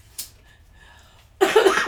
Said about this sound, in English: Yeah, if she's coughing, it's gonna be harsh.